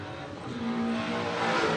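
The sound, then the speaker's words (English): Time attack race cars driven by Robert Thorne and Brian Fessler come around turn 11 on hot laps, an engine roaring steadily at high revs, a continuous loud mechanical drone with a brief rising whine, with no voices. “Oh, here comes Robert Thorne and Brian Fessler coming around 11. See what they got for us. See if they can get some more hot laps in.”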